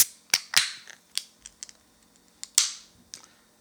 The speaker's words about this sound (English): So let's grab that new can and that glass and let's open her up.